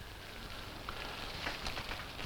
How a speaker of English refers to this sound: The music segueing into the sound of rain.